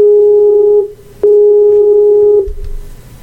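A Skype call ringing tone: two steady, clear electronic tones, each lasting about a second with a short gap between, loud, ending in faint background noise.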